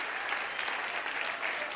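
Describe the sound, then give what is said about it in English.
An audience clapping their hands, a steady dense patter of many overlapping claps at an even, moderate loudness with no voices standing out. “Clap your hands.”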